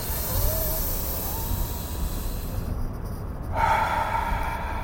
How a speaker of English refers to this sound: A lot of deep breathing. I was doing deep breathing all week. I was just driving around going like this.